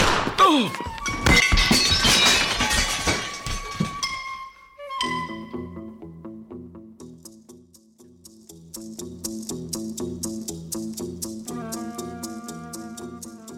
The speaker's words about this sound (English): You have me at a disadvantage, sir. I didn't expect the bullets to have such impact. I'll clean up the broken dishes.